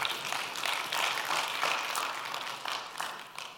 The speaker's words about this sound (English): Amen. Go ahead and give God a round of applause.